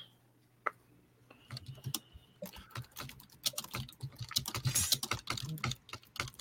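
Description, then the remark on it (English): Rapid typing on a mechanical keyboard, dense clacky keystrokes starting sparse then speeding into a steady flurry, fairly loud, with a faint hum underneath and no talking. “Someone's got a mechanical keyboard I can hear really well.”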